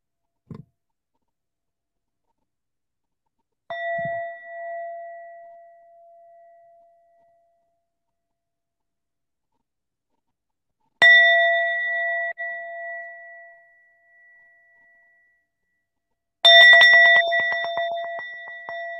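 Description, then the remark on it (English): Several bells ring out in separate strikes with long, fading tones and silence between them; the final ring is louder and fuller, with a rapid shimmering flutter as it decays. “You weren't expecting those multiple bells, were you”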